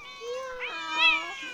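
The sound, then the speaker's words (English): A cat gives a long, drawn-out meow that rises and wavers in pitch, fairly loud, with no other sounds around it, in a home where over 300 cats live. “She's over 300 cats living with her and feeds hundreds of street cats.”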